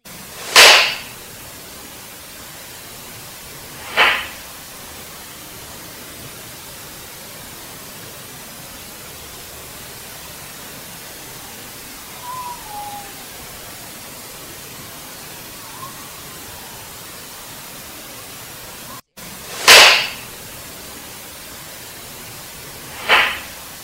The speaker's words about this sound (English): Now this one's really interesting because you'll hear a couple bangs, but then following the bangs, you'll hear whistling, and it sounds like human whistling.